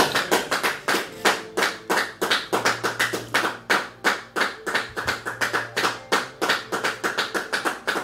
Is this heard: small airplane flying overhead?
no